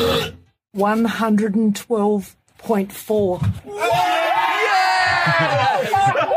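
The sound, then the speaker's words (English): A long, deep, rasping human belch, very loud, rumbles in bursts before a crowd bursts into loud whooping and cheering. It is a record-setting belch by a man in Australia, measured at 112.4 decibels. “That was a loud burp.”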